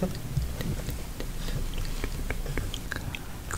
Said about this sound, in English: This is an example of mukbang. Let's hear it. Mukbang. Fuck. Eating a crunch bar.